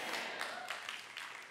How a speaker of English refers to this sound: Well, that was a golf clap. If you want to clap, go for it. I won't restrain you. You make me clap.